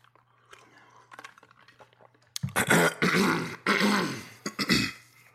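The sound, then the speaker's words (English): After a quiet stretch with faint low hum, someone clears their throat loudly: a couple of rough, raspy bursts over about three seconds, then a short final grunt. “Puerto Rico does not have power right now, but we're using a tremendous amount of electricity to send back and forth throat clears over the internet to each other.”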